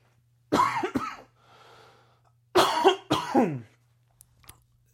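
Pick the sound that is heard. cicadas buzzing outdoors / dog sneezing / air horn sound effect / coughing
coughing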